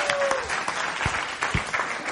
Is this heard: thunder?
no